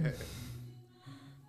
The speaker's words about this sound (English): you be breathing hard. You could hear it all up in there.